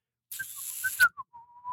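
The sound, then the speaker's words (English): A person whistles a short, wavering tune of several sliding notes, fairly clear, with a soft breathy hiss behind it and no talking. “Is the whistle a clue?”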